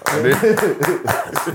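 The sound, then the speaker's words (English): A short round of applause, sharp claps sounding in quick bursts while people talk and laugh over them. “So that nigga get a round of applause and we don't?”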